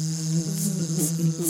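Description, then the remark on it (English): A bee buzzes steadily indoors, a low droning hum whose pitch wavers slightly as it flies, continuous throughout with faint hissy flickers above it and no talking. “Oh, is there a bee in here?”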